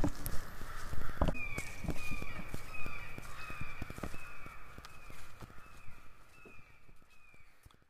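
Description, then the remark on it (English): Birds call repeatedly outdoors at the Festival of Gingerbread in Fort Wayne, Indiana, probably crows cawing in a steady series of harsh calls, with scattered footstep-like thuds and clicks underneath and no talking. “I can't get over those birds.”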